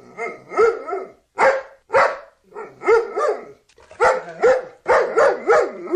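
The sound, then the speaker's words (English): A black Labrador retriever named Loki, six years old, barks and yowls happily in a lively run of about nine short bursts, each with a tonal, wavering pitch, loud and separated by brief pauses, after going outside and sniffing a bush. No voices are present. “The deliriously happy pooch had this to say about his glorious day.”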